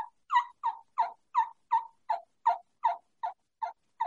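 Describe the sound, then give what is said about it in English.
A turkey mouth call sounds a kee-kee whistle blended into a yelp: about twelve evenly spaced, raspy mid-pitched notes in a steady rhythm, fairly loud, with no talking. “So how you do it with a mouth call, if all I'm doing is I'm doing like a whistle, like a kiki whistle. Only I'm yelping.”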